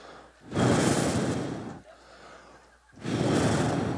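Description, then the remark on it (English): Heavy, labored breathing of a runner seven miles into a run: two long, loud breaths with a quieter intake between them, rough and breathy like someone panting hard after exertion. “You ever be 7 miles into a run and all you hear is your own breathing?”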